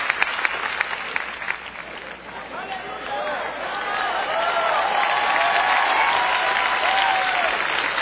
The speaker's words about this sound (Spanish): Entonces, dele palmas al Señor de la gloria.